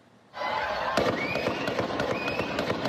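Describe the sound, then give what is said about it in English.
A rapid burst of gunfire at a 4th of July parade, a gunman firing from a rooftop: a quick, steady string of sharp cracks lasting about two seconds, ringing out over a loud, busy outdoor background. “A sudden burst of gunfire 10 minutes after the start of a 4th of July parade sent parade participants and spectators running for their lives.”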